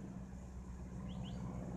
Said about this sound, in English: I guess you guys can hear the plane above. We got an airport just right nearby us.